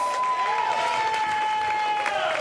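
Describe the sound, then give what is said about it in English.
A crowd applauds and cheers steadily for a couple of seconds for two competitors, a dense, even wash of clapping with a thin sustained whistle-like tone running through it. “Give them a round of”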